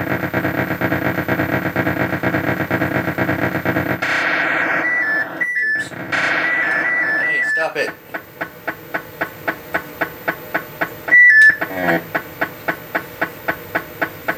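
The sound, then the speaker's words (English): A video game effect of a Ringwraith catching the player: a dense, harsh electronic drone, then shrill screeching sweeps and a steady stream of rapid rhythmic pulses, with a loud shriek near the end. No one speaks. “That was a ring wraith getting me, by the way.”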